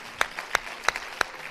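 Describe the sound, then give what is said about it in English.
An audience claps along in the morning, giving the Lord a hand clap and an ovation of praise, in a steady, even rhythm, with sharp, bright handclaps landing about three times a second over a softer wash of scattered clapping. No one speaks. “One more time this morning, let's give the Lord a hand clap and an ovation of praise.”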